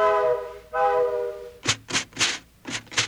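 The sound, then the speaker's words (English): A steam train whistle sounds two long, steady blasts, followed by five loud, breathy chugs in a quick, uneven rhythm. “Choo-choo-choo. Choo-choo-choo's your favorite cereal.”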